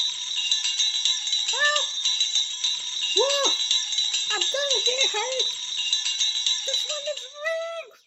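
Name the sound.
hand bell ringing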